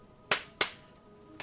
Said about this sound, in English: You know, different claps from different parts of the house. Or creepy. Claps from different directions.